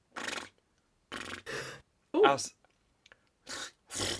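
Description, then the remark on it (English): A voice imitates a little horse: a few breathy, snorting puffs around a short, wavering whinny in the middle, moderately loud, with brief pauses between bursts. “Oh, and then they hear a little horse noise.”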